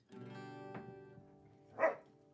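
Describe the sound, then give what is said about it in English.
A puppy yips and whines in short bursts, with one louder, sharper bark near the end, over a sustained tonal hum. “Oh, puppy. They want to sing too.”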